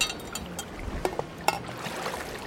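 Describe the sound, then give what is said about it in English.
Tea pours from a flask on a paddleboard in a soft, steady trickle, with a few light clinks of cups and a gentle outdoor water ambience underneath; no one speaks. “So in this dry bag, I've got some flasks of tea for you.”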